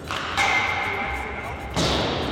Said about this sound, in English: That thud is the sound of a rubber hockey puck that's been shot at Gibson that he is blocking with his body.